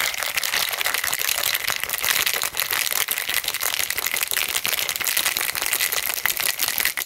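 A full cocktail shaker holding eight ounces of drink is shaken hard and steadily for several seconds, ice rattling in a rapid, continuous clatter of sharp clicks. The sound is loud and even, with no talking.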